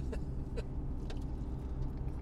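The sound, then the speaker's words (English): Steady low rumble of a car interior, a dense droning hum that fills the space throughout, with a few faint brief ticks over it and no talking. “So we're in the car, obviously”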